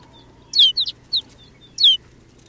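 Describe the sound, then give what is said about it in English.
A flock of sparrow-sized snow buntings settling on bare brown earth calls in a few quick bursts of short, high, buzzy chirps over a low steady background rumble. “Now it's clear that rolling white cloud isn't snow at all, but a flock of snow buntings.”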